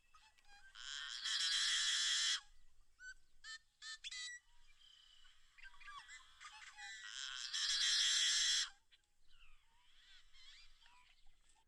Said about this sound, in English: And here's the unmistakable song of the yellow-headed blackbird.